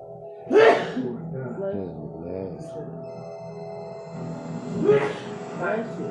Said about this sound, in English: Bless you. I should have seen that coming.